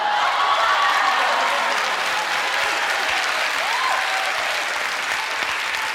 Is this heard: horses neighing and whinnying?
no